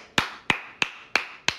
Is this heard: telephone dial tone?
no